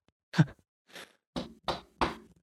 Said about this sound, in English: Okay. The knock. You knock and you don't hear anything. One more time. Nothing.